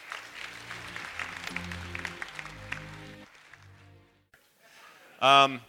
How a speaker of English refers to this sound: Thank you again, everybody. Another round of applause for these guys.